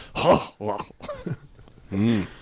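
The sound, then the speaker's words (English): A rough, phlegmy throat clearing by a singer in a song recording, in several gravelly, groan-like bursts, fairly loud, ending with a longer drawn-out vocal rasp. “He's clearing his throat, but it sounds like just the worst phlegm.”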